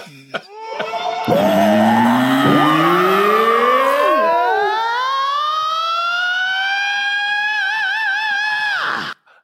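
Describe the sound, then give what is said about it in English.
A layered Crate Dragon creature scream, built by combining several shrieking voices, including Ben Burtt and another sound designer raw scream sounds and a singer, with a little reverb. It rises steadily in pitch over about eight seconds with wavering, siren-like harmonics, loud throughout, before cutting off abruptly. “I think we've made the ultimate Crate Dragon sound there.”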